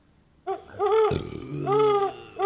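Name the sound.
owl hooting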